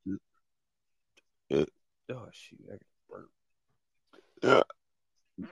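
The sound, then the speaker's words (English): A loud burp breaks out amid brief snatches of speech, followed a few seconds later by another short, throaty belch. “I'm sorry for burping my husband.”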